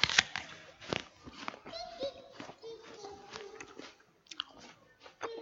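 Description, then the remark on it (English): Crisp crunches of someone biting into and chewing fruit, a steady run of wet, crackly chews with brief pauses, and faint voices murmuring in the background. “I didn't realize how long it takes to chew.”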